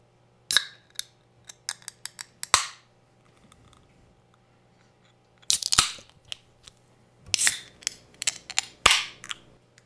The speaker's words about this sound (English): No, open your beer before we start. Open it next to the microphone. Open it next to the microphone? At least up here, boy, you know where they can hear it. Once. Welcome to the beer ASMR portion of the podcast.